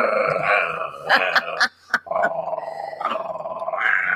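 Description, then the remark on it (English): Small, dog-like growling and whining noises like the Wolfman's in the movie rumble fairly loud, mostly continuous with a short pause midway, sounding more like soft grumbles than a full growl. “They're like, I like how he like had little dog noises in the movie too.”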